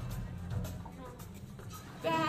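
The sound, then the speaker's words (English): Several voices together make a low, drawn-out bleating sound, imitating a giraffe, rising louder near the end in a group chorus. “Oh, well, neither did I, so I had to look it up, and it said a low bleating sound, kind of like a sheep.”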